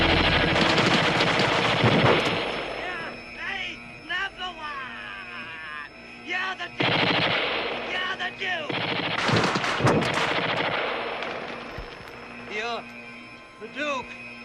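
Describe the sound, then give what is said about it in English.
Loud, rapid bursts of automatic gunfire come in several sustained volleys, with voices shouting in the gaps between them, like a shootout in a John Carpenter film scene where the President of the United States, played by Donald Pleasance, shoots the Duke of New York at the end. “Yeah, and the line we just quoted there, Donald Pleasance, the President of the United States, probably with that, you're the Duke of New York, you're the A-number-one, that line, and the line at the end when he shoots the Duke.”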